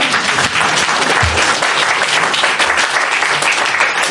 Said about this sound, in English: If anybody feels like applauding, you can applaud, but that's fine.